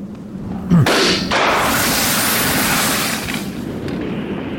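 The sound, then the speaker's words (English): A balloon is shot and pops with one sudden, loud bang, followed by a steady, broad rushing hiss that lasts several seconds and slowly fades. No one speaks. “Yep, just shot out a balloon. It's pretty loud.”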